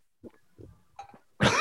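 A few short throaty coughing sounds in quick succession from a person whose throat works improperly, building to a sharper, louder cough at the end, with no talking.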